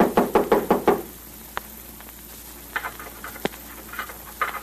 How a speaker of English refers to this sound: Someone knocked.